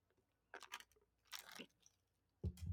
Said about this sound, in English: I'm so sorry, I'm getting dry. I need another sip.